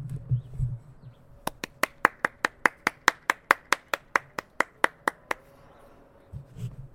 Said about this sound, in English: I wish I had my iPad for the sound effect, but I'll put the microphone down and just clap myself.